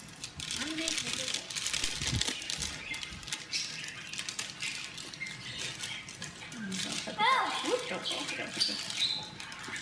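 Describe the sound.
Scissors snip and crunch through stiff plastic packaging with crinkling and rustling, while muffled voices talk in the background.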